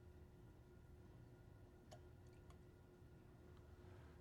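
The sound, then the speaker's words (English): A few faint, sparse drips tick into glassware, irregularly spaced over a steady low hum of background equipment; no one speaks. The drips fall from a condenser as more liquid is poured into glassware holding tea leaves. “Now, what's going to happen when I pour a little more in? It's drip, drip, drip, actually, of course, from a condenser.”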